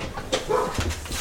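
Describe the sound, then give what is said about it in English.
A dog barks a couple of times in quick succession, short sharp yelps over a steady background hiss, with no one talking. “My dog keep barking.”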